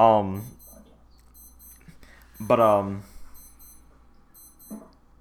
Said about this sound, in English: Sorry, my watch is going off